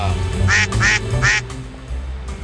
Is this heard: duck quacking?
yes